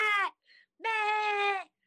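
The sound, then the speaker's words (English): A person imitates a goat with two loud, nasal bleats: a short one, then a longer, quavering 'baaa' after a brief pause. “She says, I would be a goat and just be the most annoying, loud piece of shit the whole time.”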